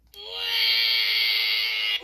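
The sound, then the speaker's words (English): A loud crowd boo swells in abruptly and holds steady for about two seconds, a dense sustained jeer from many voices, then cuts off sharply. “Thought I had a boo on here somewhere.”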